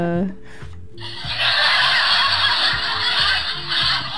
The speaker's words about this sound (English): Where's the laugh track? Hold on.